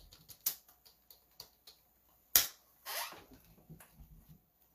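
Irregular keyboard typing, a scatter of quick, dry clicks with a few sharper, louder key strikes and a short burst of faster tapping, all fairly quiet and with no one talking.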